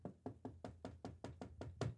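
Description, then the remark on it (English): Rapid, steady knocking on a door, about ten sharp raps in quick even succession, fairly quiet with no voices. “As I've tried to get some things done, I heard a knock on my door.”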